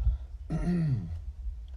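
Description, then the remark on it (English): A single short, polite throat-clear, a soft voiced "ahem" made by a voice imitating a young woman clearing her throat to grab attention, moderately loud over a low background rumble. “I started on a drawing, and I heard a young woman politely clearing her throat, the type used to grab attention.”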